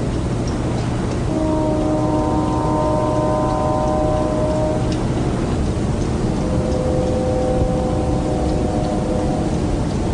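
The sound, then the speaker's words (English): Two long, steady horn-like tones, harmonically rich like a distant train whistle, recorded at night with a home recording kit, sound one after another over constant hiss resembling rain or wind noise, with no voices present. “I hear what sounds awful lot like a train whistle.”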